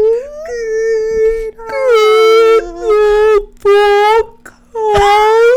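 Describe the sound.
A person imitates a whale call with four loud, drawn-out moaning tones whose pitch swoops up and down, each separated by a brief pause.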